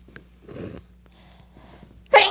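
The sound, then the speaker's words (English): A single loud sneeze bursts out at the very end, preceded by a few soft breathy sounds like a sharp inhale building up to it. “Bless you.”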